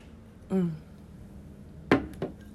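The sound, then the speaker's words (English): A brief sip of coffee from a cup, followed by two light clinks as the cup is set down, otherwise quiet with no talking. “But yeah, I'm just having some coffee. I'm gonna have a little sip if you don't mind.”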